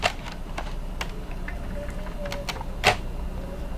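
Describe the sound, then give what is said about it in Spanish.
Computer keyboard keys being pressed in an irregular string of light clicks, with one sharper, louder clack near the end and no voices. “Este es el teclado.”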